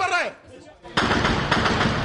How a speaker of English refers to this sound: And everyone's shooting, because the only thing that can stop that vehicle reaching its target is a hail of gunfire. And it's terrifying.